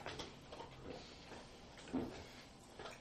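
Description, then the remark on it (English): A chair creaks and scrapes in short, uneven bursts, with a louder groan near the middle and softer rustling shifts around it; no one speaks. “That was one noisy chair.”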